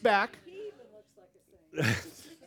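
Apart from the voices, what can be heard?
sneeze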